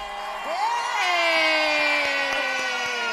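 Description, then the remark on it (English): A crowd of arriving guests in a building cheers and whoops loudly, with one voice rising into a long sliding whoop over a dense wall of shouting and clapping that stays steady throughout. “We got our crowd in the building.”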